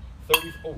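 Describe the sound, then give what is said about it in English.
A single bright clink of a drinking glass, struck once and leaving a thin ringing tone that lingers briefly beneath soft background voices. “It's your glass, so I don't worry about it. I didn't break it somehow.”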